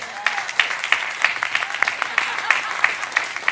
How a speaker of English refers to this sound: That was a PGA clap. I'm going to say it again. I want an NFL clap.